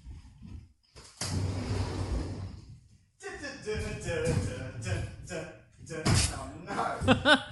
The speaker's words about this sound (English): James is struggling getting his chair inside the man cave.